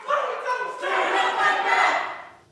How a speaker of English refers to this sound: Now, soon after that chanting started, the crowd did leave peacefully.